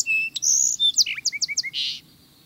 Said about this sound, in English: If you plant your garden in multiple layers, trees both short and tall, shrubs and ground-hugging thickets, you may be rewarded with a multi-layered medley of birdsong.